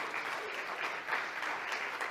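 A crowd applauds steadily, many hands clapping in a dense, continuous patter that holds an even loudness throughout without a break.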